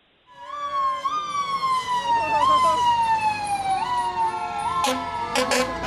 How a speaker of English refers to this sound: take out their trucks, like the fire department, the police department, and drive by his house to celebrate James's birthday